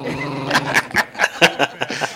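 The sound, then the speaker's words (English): A dog growls in rough, rumbling pulses, with short snarling bursts breaking through every fraction of a second. No one speaks over it. “Get this dog out of here.”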